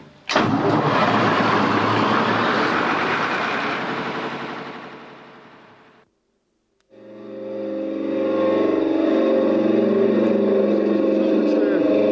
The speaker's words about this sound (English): I'm going to start up the Lister engine now to get the fog signal test.